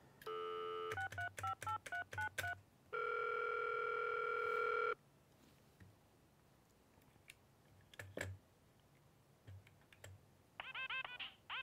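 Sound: telephone dialing tones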